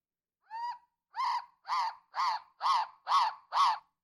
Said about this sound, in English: What in the fuck? That was a cockatoo.